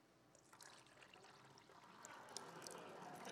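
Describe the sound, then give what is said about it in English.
Water pours steadily from a pitcher, a continuous splashing trickle that builds slightly in volume over a few seconds, fairly quiet and heard on its own without talking. “So this pitcher here represents our worship. And the water within the pitcher is God's grace poured out on us.”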